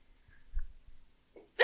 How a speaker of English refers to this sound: Give me a second to stop hiccuping real quick. Are you going to hear? Hold for hiccup?